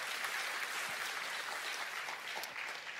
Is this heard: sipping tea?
no